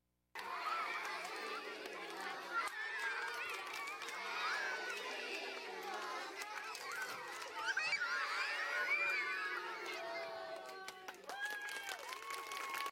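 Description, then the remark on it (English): A crowd of children plays and shouts together, a steady, lively din of overlapping high voices and squeals that carries on without a break, loud. “Children shouldn't be screaming in pain. They should be doing that.”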